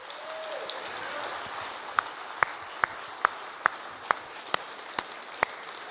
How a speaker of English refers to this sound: How about another round of applause for those kids?